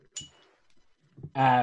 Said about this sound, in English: Oh, shit, I dropped my dice.